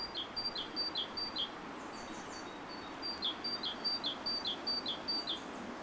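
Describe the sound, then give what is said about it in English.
A bird sings two bursts of quick, bright, high-pitched repeated notes, each a short descending series, over the steady background rush of a river; clear, with no talking. “What an amazing sounding bird.”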